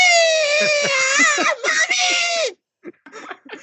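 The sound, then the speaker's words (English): A voice imitates the shrill scream a child of about nine would make when grabbed by a stranger: one sustained, high, wavering wail lasting about two and a half seconds with a brief catch midway, followed by a few short, quieter vocal fragments. “Okay, you know, like they make effeminate screams, whether they're male or female.”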